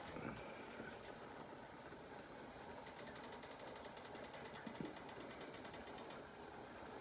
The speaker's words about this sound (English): So this is almost getting to a boiling point. Actually, it's starting to boil because I can hear it. But I'm just going to wait for it to go a little rapid.